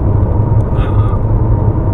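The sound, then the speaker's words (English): A heavy truck from Mexico rumbles by on the freeway, a loud, steady low-pitched roar of engine and road noise with a brief hiss partway through. “What the fuck is this truck?”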